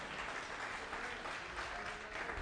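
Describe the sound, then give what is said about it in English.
An audience claps steadily, a dense, even wash of many hands that holds at a constant moderate loudness for a couple of seconds, with no voices standing out. “Before you clap and get excited, some of you might not have met the new you yet.”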